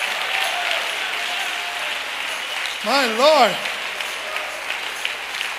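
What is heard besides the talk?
audience applause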